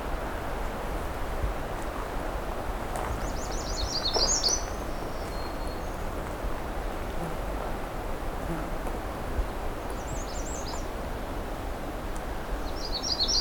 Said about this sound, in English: Okay, habitat's getting much thicker now. Any taller jack pine trees. So we've got a magnolia warbler close up here.